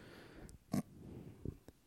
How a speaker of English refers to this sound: You're snorting like a pig.